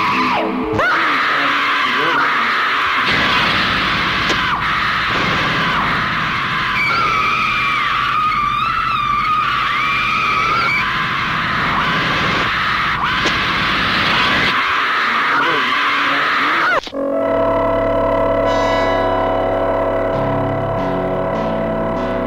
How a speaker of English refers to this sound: All right, everybody, you just heard a trailer for Messiah of Evil from 1973.